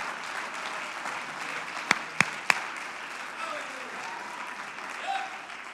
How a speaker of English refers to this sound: Come on, somebody clap your hands if he's alive. Clap your hands if he got up.